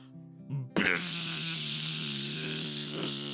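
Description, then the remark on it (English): A low droning hum gives way to a sudden, loud swell of buzzing, like a bee swarm, which holds steady and dense for the rest of the moment with no voices. “The 100 bees swarm towards the beetle and form a set of giant bee wings.”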